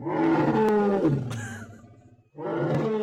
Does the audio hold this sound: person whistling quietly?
no